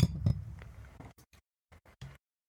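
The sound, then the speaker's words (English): Shot glasses clink together in a toast: a few short, bright taps scattered irregularly over a couple of seconds, fairly quiet, with no one speaking. “So, when you hear the clink, drink.”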